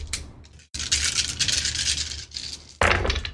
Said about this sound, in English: So go ahead and clear out the dice tray, and then I will roll for her.